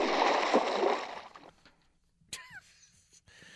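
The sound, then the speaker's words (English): A loud, rushing splash of water that churns for about a second and then fades, followed by a quieter sharp knock and some faint chirping tones. “I just don't want to say anything about it right now, but it's just a splash.”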